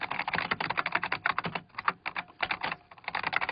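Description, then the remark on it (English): Rapid, steady typing on a Dvorak computer keyboard as dictated words are typed, a dense run of crisp key clicks with a couple of brief pauses, heard alone without any voices. “My name is Peter Kay, and I am using a Dvorak keyboard.”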